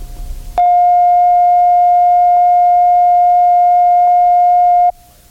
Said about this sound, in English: The following tone is a reference tone of 700 cycles per second recorded at operating level. Set the playback level control so that the tone reads zero on the VU meter.